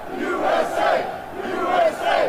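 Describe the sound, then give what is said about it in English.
A large crowd at a rally chants "USA" in unison, voices rising and falling in a steady, repeated rhythm. The roar is loud, dense and continuous. “Here we go. USA! USA! USA! USA!”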